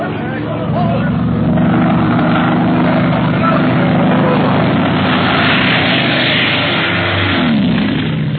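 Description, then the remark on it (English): A propeller plane dives low overhead after starting from a great height, in a loud, steady engine drone that fills the whole recording, its pitch sagging near the end as it sweeps past. “Why is he making such dives and so low?”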